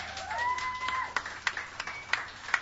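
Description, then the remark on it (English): Scattered, faint audience applause at the YEG Live Songwriter Stage on a Sunday night: a handful of separate claps spaced irregularly, preceded by a short rising whistle, with no speech. “Yeah, give him a hand.”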